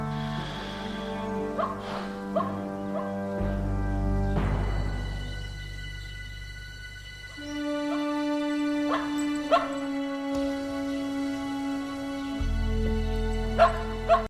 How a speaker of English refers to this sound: He hears the dog barking and finally realizes, well, I've got to be close to him because the dog isn't outside anymore. It's not barking. So, but he hears the dog in the same tone.